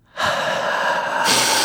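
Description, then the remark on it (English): A loud, forceful breath blown out into another person's face, one long continuous exhale lasting over a second that turns harsher and hissier toward the end. “I'm going to look at his chest, but also I'm going to say, breathe, breathe right in my face.”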